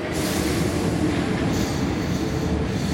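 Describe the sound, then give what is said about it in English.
A metro train at the Porte de la Chapelle metro station in Paris rumbles steadily and loudly, a dense low roar of wheels on track with faint hiss above, continuous for the whole stretch with no voices. “The Porte de la Chapelle metro station periodically becomes a squatter camp.”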